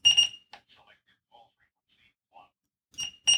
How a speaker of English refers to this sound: I can hear beeping. That's you being paged.